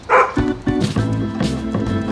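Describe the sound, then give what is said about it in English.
A dog barks sharply, then gives a run of short, closely spaced barks and yips, loud, over a steady outdoor background on a wide, tree-lined promenade along Riverside Drive in New York City, with no one talking. “We left our apartment building, stopped for a minute to take in the scene, then turned onto Riverside Drive, a tree-lined street with a wide promenade that makes it a popular place for people walking and dog walking.”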